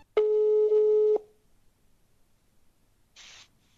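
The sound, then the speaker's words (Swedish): A single steady electronic ringback tone sounds for about a second on an outgoing phone line, followed by a pause and then a short soft burst of noise, with no one speaking. “Men nu ringer vi.”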